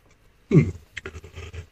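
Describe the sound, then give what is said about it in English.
A single yawn from general tiredness: a short voiced groan that bends in pitch, trailing into a breathy, shuffling exhale. No speech accompanies it. “I apologize for my yawning and stuff like that.”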